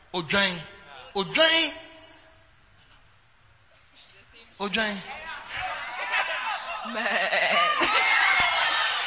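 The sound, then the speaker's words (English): Several voices imitate bleating sheep, with a few short wavering bleats early on, then a rising jumble of overlapping bleats and laughter from a lively crowd that grows louder toward the end. “Now, the next stage, which is the best stage, is you should move from the goat stage to the sheep stage. Sheep. Somebody say sheep.”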